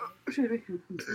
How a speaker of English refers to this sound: Beer burps.